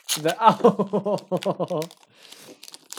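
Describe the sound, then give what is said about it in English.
A voice is heard first, then the wrapper of a peanut butter Oreo chocolate bar rustles and crinkles quietly in short, scattered bursts for about a second. “if you can hear that rustling noise, I don't care, frankly. It's some peanut Oreo chocolate, and I won't be made to apologise.”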